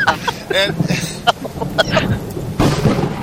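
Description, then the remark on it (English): Heavy rain hisses steadily, with low rolling thunder rumbling underneath and a few sharp bursts. Brief voice-like sounds cut in over the downpour. “It's just bam! All this rain is coming down.”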